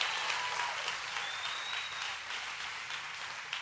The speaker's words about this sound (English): Can we give God the biggest hand clap of celebration?